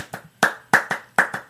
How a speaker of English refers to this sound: Well, if we're going to get real, I'll keep clapping.